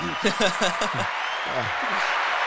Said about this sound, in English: Give you a round of applause.